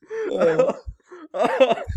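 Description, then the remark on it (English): Two bursts of voiced laughter from a person who is sick, each ending in a short, low, breathy catch like a stifled cough or throat clear. Moderately loud, with no talking. “So like every time I laugh, it's a struggle not to cough.”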